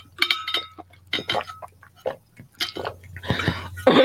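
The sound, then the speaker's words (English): Clinks and clatter of a glass being handled as a person gets some water, with brief splashy bursts like water being poured and sipped, over a steady low hum. “sorry, let me get some water. 1 second.”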